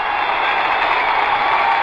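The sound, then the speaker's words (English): A large sellout crowd at Madison Square Garden cheers as Knicks captain Willis comes out, one loud, continuous roar, a dense wash of voices that holds steady for the whole stretch without pause or swell. “Listen to that crowd.”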